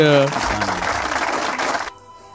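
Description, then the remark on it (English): A brief tonal voice gives way to a short burst of scattered clapping from a handful of people, fairly loud and uneven, which cuts off abruptly after about two seconds. “There's like four people clapping.”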